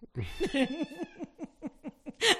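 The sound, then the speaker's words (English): A person imitates a cat as a call to suitors, making a quick run of short, wavering meow sounds, ending with a louder, longer yowl. “That's my new call to suitors. A cat call.”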